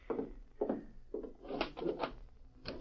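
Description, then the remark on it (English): The front door of a general store is unlocked and opened at night with a series of wooden clunks and rattles, irregularly spaced, with no voices. “Open up, man. Open the door.”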